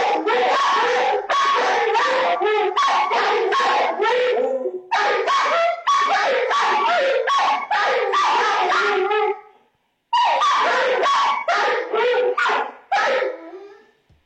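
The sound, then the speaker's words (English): Several dogs in a video played on a computer screen bark, yelp and whine loudly and continuously in overlapping bursts, with a brief pause near the end before the excited barking resumes. “Sorry for people who are just hearing dogs barking.”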